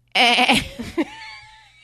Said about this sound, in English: If I press this button, it sounds like a goat.